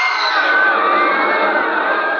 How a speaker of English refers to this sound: I heard the terrified roar of thousands of throats, and I knew it was death.